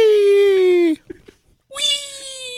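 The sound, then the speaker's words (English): Two long, drawn-out cat meows, loud, with a short pause of faint rustling between them; the second meow starts sharply and holds steady. “Lunar Kitty! I'm going this way!”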